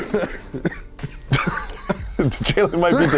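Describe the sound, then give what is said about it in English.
A man coughs in a few sharp bursts, fairly loud, mixed with laughter and voices talking over it. “He's laughing. Now he's coughing.”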